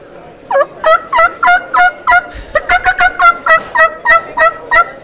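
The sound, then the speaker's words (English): A turkey call blown on a double reed mouth call, a fast run of raspy, high-pitched yelps repeated in steady bursts, loud and alone without any talking. “But my turkey call with this, you know, I love my turkey call and my elk call.”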